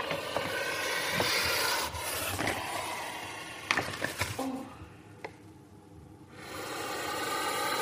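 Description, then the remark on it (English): A puff adder in a cage at Liverpool's Venom Unit, puffing after the cage is opened: loud, breathy hisses repeat in rough surges, broken by sharp knocks and scrapes as the snake bites the microphone, with a brief lull before the hissing swells again. “to record the puffs of a puff adder.”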